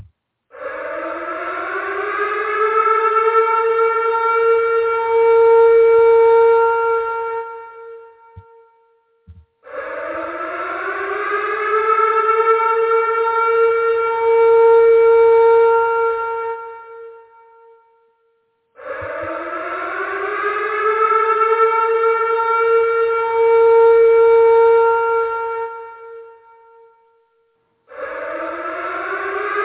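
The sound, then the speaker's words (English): A loud civil defense siren wails in long rising-and-holding blasts, about three full cycles separated by brief pauses, with a fourth beginning at the end. No voices are heard. “So while we're getting that set up to get started, we're going to hit the siren.”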